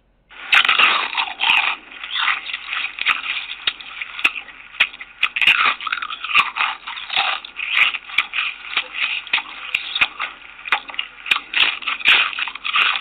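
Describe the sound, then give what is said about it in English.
Loud crunching of potato chips, a steady stream of brittle crackles and snaps that continues without pause for several seconds, with no voices. “Time a person crunches into a potato chip, he or she is enjoying the delicious taste of one of the world's most famous snacks”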